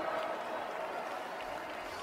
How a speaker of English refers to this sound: Thank you for that tepid applause.